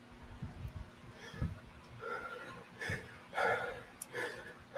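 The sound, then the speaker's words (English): Heavy breaths puff and rasp right against the microphone, a rough series of uneven inhales and exhales, some sharp and gasping, with no talking. “Y'all gonna get some heavy breathing ASMR for a minute.”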